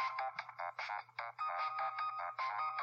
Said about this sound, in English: This is the ringtone in-game from Luigi's Mansion Dark Moon